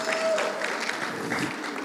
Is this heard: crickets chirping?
no